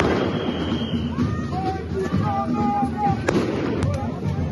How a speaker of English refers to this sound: Explosions taking place.